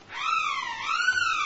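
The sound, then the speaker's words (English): A telescope warning siren, sounded by a button to the right of the master key to warn anyone on the telescope that it is about to move, wails steadily with a rich, buzzy tone, its pitch sagging slightly and then rising again over about a second and a half, with no voices. “Telescope siren.”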